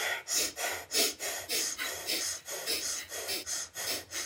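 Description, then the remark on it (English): Rapid, forceful breaths in and out through the nose repeat in a steady rhythm about twice per second, fairly loud, with no talking, during a breathing exercise while silently chanting "Sat Nam". “So as I'm breathing, I'm chanting in my mind, Sat Nam, Sat Nam.”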